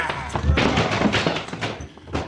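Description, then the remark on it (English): A heavy body thuds onto the ground amid a burst of scuffling as a man is thrown over another man's head and knocked out, followed by a few more dull thumps and rustling, with muffled vocal sounds mixed in. “You throw him over your head and knock him out.”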